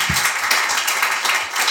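A crowd applauds, dense overlapping clapping at a steady, fairly loud level throughout the short burst, with no voices standing out.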